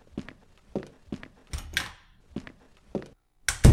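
Father Murphy's footsteps as he leaves: about eight soft thudding steps at an even walking pace, ending in a sharper, louder knock. No one speaks.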